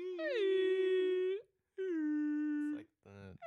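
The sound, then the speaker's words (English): A person imitates a beluga whale call with two long, steady, whistly tones of about a second each, slightly wavering, followed by a short burst of buzzy, clicking sounds. “What is his name? Beluga, the beluga whale.”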